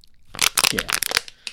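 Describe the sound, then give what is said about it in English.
Someone gently chews on the top of a plastic water bottle with water in it, producing a quick burst of sharp, irregular crackles and crunches that lasts about a second, then one last faint crinkle. “Are you actually chewing on the water bottle?”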